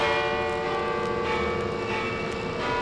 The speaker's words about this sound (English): Well, what do you know? The bells! They broke loose from the webbing!